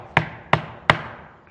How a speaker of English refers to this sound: And as you're lying in bed, relaxing, peaceful, you hear that knock on your door.